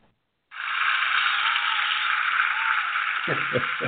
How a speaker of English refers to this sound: Very funny, adding the applause. That was a good one. I like that.